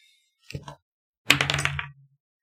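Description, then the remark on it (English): Dice rolled for a dexterity check in a tabletop game clatter briefly, a short rattle followed by a louder burst of tumbling clicks as they knock against a hard object and settle on 14, fairly loud with no talking. “The dice just hit this.”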